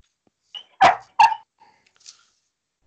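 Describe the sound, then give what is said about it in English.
A dog barks twice in quick succession, loud, followed by a few faint small noises in otherwise quiet surroundings. “The dog agrees.”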